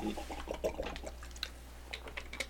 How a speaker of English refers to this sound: And maybe you can hear us both drinking water throughout.